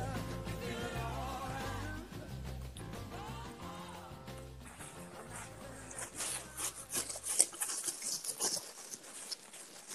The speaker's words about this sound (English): All right. Here's the rustling of the hat.